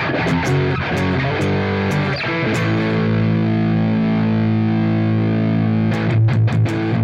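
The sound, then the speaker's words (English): A Telecaster electric guitar played through a distortion pedal plays a few heavily distorted, choppy chords, then lets one thick, saturated chord ring out and sustain before a final burst of strums. Loud, with no talking. “It's a really sonically rich distortion.”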